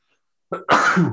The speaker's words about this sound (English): It might be my first deuce sneeze.